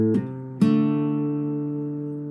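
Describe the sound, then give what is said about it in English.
Acoustic guitar playing a short blues lick on open D and A strings (strings 3 and 4, the A an octave), plucked with the first and second fingers while the fretting hand holds a half D chord shape: two quick plucked attacks, the second stronger, then the notes ring out with slight vibrato and slowly fade with no talking. “And then I'm going to hammer on to the fret 3, the C on the A string.”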